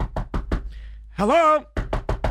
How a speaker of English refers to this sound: I just have to be persistent. I'll just knock on the door again.